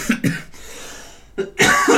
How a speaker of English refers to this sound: Sorry about the coughing. I hit my vape before this, and it's just been kicking my butt since then.